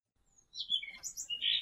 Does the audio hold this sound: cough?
no